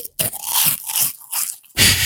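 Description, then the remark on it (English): Loud crunching of onion-flavoured Space Raiders corn snacks being bitten and chewed, a run of dense crackly bursts with brief pauses between bites, ending in a sharp fresh crunch. “And then, you know, it's noisy. That crunch.”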